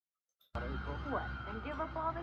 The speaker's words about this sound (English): It's late. You can hear sirens in the city because of all those pickpockets.